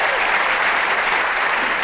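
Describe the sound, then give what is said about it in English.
The live studio audience of the show Wait Wait... Don't Tell Me applauds, not canned applause, in a dense, steady wash of many hands clapping at once, holding an even, fairly loud level throughout with no voices standing out. “Is there that canned applause?”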